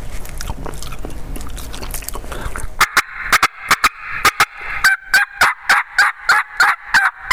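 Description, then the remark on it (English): Excited turkey hen clucking and purring, demonstrated on a call by a hunter: scratchy rustling first, then a rapid run of sharp, loud clucks with a rolling purr between them, clear, no talking. “he's strutting, he's showing off for the ladies, and then you start clucking and purring.”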